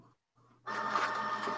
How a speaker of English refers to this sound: No, there's no one playing with the printer. What the fuck? It's printing.